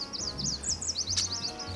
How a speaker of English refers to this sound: It's not like there's a bird song here and a bird song there. It's just this kind of wash of sound.